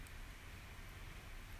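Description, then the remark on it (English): Steady, soft rainfall hisses evenly throughout, a quiet, continuous wash of patter with no distinct drops standing out and no voices. “The rain, sounds from a kitchen cupboard next door, wet jackdaws calling, and twit-twit fluting of a blue-tit?”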